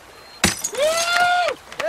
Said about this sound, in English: Thanks for breaking glass where my kids play.